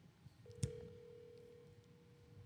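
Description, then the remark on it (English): A phone line tone sounds steadily after a sharp click, an outgoing call to the speaker's mother ringing through the handset, moderately loud with no one speaking. “All right, I'm gonna put my mom on the phone, and she's gonna be so excited to find out she's on the podcast.”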